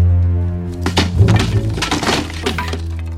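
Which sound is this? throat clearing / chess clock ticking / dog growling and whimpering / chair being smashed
chair being smashed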